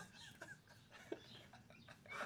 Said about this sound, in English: I haven't heard for months, and then all of a sudden we go to do the podcast and hear birds all over.